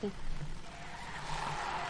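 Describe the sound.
A car's tires screech in a skid during a crash, a sustained squealing whine over a broad rush of road noise, loud and steady for a couple of seconds with faint voices underneath.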